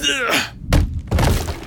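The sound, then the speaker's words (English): A short vocal grunt, then a small wooden coffee table, hurled against a window, slams into the glass with a heavy thunk, followed quickly by a second dull knock as it bounces off the unbroken glass; loud. “Desperate, he grabbed a small coffee table and hurled it against the window.”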